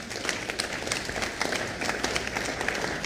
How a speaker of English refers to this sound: Oh, I thought you would clap.